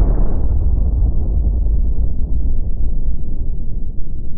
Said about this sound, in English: There's only one known process that creates this particular isotope of xenon, the detonation of nuclear weapons.